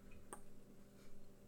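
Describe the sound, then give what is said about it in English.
A single crisp drip from a faucet lands against a quiet, low hum, followed by a fainter second drop about a second later. “Faucet dripping, but yes.”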